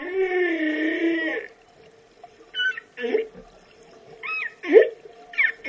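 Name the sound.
humpback whale song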